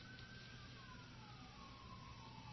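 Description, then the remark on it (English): A distant emergency siren wails in a slow, falling tone, faint above a steady rumble of traffic and background noise, with no voices. “Oh, there's the sirens again. They're coming to get us.”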